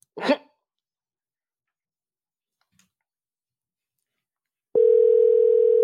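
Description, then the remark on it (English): A brief breathy burst, then near silence with a faint click, before a steady electronic telephone tone starts loudly and hums on unbroken until the end, as a phone call is placed to someone's sister. No one speaks. “We call my sister. She be feeling like we don't call her.”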